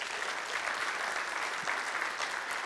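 Steady audience applause, a dense, even patter of many hands clapping that holds at a fairly constant level throughout, with no voices standing out.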